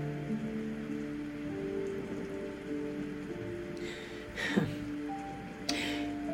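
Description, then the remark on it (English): Heavy rain pours steadily onto a surface in a dense, continuous hiss, broken by a couple of sharper splashes near the end, with faint sustained tones humming underneath. “40 days and 40 nights it poured.”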